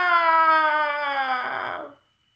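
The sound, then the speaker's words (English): A wolf being crushed by a launched boulder: a loud, sustained tonal cry that slowly falls in pitch, then breaks into a rough, noisy crunch and cuts off abruptly, with no talking. “Jeez, I don't think I've ever heard a wolf get crushed by a boulder before, but I mean, there it is.”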